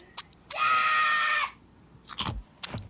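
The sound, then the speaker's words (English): A loud, sustained high scream is followed by two sharp crunching bites into a crunchy Butterfinger candy bar with a smooth chocolatey outside and a crunchy peanut-buttery inside, each a brief crackly burst with no talking. “Check out the smooth, chocolatey outside, the crispity, crunchity, peanut buttery inside.”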